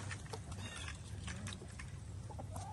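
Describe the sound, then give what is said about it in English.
In the morning, several chickens cluck and chatter in a steady, overlapping stream as they come out of their coop, with short bursts of calls over a constant low rumble of background noise. “So anyway, good morning, birdies. How's everyone doing? Out we come. Out we come.”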